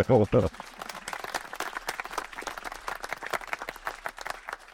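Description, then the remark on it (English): A crowd at Rice University applauds steadily for several seconds as the university's provost is introduced, a dense patter of many hands clapping at moderate volume, with a brief burst of voiced sound at the very start. “and no pressure on you for great applause, but she's my boss, so let's try to look good.”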